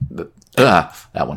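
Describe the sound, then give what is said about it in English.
A single sharp, loud sneeze bursts out, briefly interrupting a man's short casual remarks before and after. “Bless you.”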